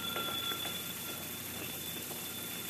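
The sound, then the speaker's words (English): A telephone rings with a steady, high, continuous tone over a hissy background, fairly quiet, with no voices. “But why is the telephone ringing?”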